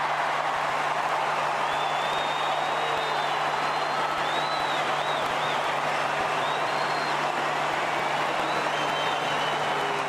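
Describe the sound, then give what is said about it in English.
A huge stadium crowd boos as Jack Ginnivan of the Collingwood Football Club is announced winner of the Anzac Day medal, a continuous, dense roar, with shrill whistles rising and falling above the noise. The din stays loud and steady throughout, with no clear speech. “Yep, so you can hear it there near the end, and I just thought that was an out-and-out disgrace.”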